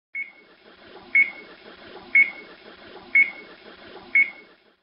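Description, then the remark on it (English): A game show countdown timer beeps five times, one sharp high tone each second in a steady rhythm, over a low murmuring background hum. “old-timers among you will recognize the timer from the classic Concentration game show”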